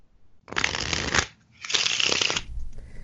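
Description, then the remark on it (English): Two quick riffle shuffles of a deck of playing cards, each a dense burst of flicking, rattling card edges lasting under a second, separated by a brief pause. “then interleave the piles in the same way, you get the other type of perfect shuffle, which is called an in shuffle”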